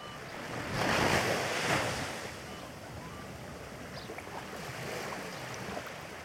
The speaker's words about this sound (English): The cool night air of the Salton Sea rustles through the canvas tents lining the street. You can hear the waves off in the distance.